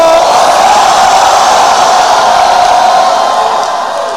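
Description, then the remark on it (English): An audience shouts Hosanna to the Lord together in a loud, sustained roar of many voices, dense, holding for several seconds before easing slightly at the end. “Give the Lord a shout of Hosanna.”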